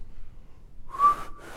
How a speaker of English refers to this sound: I can't whistle like normal people whistle. I'm gonna try and demonstrate how normal people whistle.